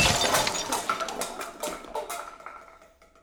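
A light fixture crashes down and breaks, with a burst of glassy shattering followed by scattered tinkling fragments and clinks that gradually die away, no voices present.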